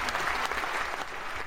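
Steady applause from an audience, a dense, continuous patter of many hands clapping at an even loudness throughout, with no voices standing out.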